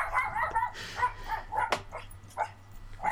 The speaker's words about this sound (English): This dog is not about. There's a dog there? Why is there a dog there? Where? In your life. That's. Roommates. It's outside.